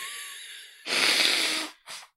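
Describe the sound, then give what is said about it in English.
A person blows their nose, trying to turn away behind the microphone: a quiet wheezy lead-in, then a long loud rushing honk, followed by a short second blow. “I also need to blow my nose, so hold on a second.”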